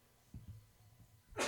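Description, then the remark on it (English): A single loud human sneeze bursts out sharply at the end, preceded by a few soft low thumps and breaths, with no talking. “That was a big old sneeze.”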